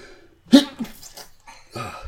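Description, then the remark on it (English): A single sharp sneeze bursts out after a brief hush, followed by a few softer breathy, throaty sounds. “Hold on, I gotta sneeze.”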